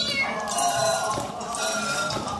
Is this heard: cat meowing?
yes